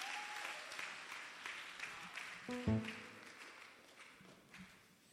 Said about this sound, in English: Clap your hands and stand to your feet.